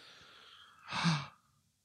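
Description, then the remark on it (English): A single sharp, breathy gasp from a person, fairly loud, rising out of faint background hiss and dropping quickly to silence. “He gasps.”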